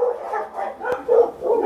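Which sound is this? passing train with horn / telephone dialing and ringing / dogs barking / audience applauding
dogs barking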